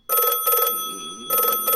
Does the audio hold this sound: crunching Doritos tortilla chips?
no